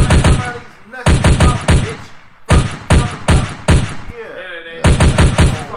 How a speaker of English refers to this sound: Better gunshot.